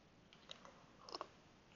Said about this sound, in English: I'm just going to have a sip of tea.